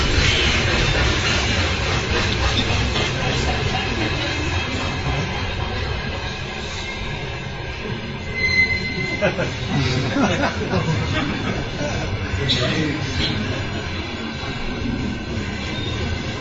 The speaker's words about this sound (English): Anyway, when the train started to come, it made a sound which sounded something like a conch shell. How long was that train? It must be more than half a kilometer long. I thought maybe it stretches all the way back to Moscow.